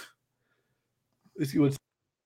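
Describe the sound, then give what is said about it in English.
A single sharp sneeze bursts out after a short quiet pause, with a brief voiced catch leading into it. “Bless you again, my friend.”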